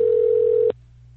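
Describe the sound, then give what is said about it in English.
A steady telephone ringing tone from an outgoing call placed live on air hums for under a second, then cuts off abruptly, leaving a faint low electrical hum on the line. No one speaks. “It's ringing.”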